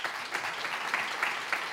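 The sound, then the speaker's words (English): A crowd applauds steadily, a dense wash of many hands clapping at an even, moderate loudness, with slight swells in intensity and no voices rising above it. “well, first, applause again.”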